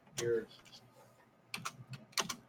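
Crisp keyboard typing in short bursts of clicks, with a brief pause in the middle before a quicker flurry of keystrokes; no talking.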